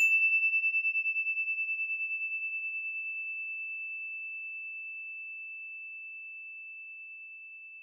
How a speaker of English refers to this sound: Here comes the bell.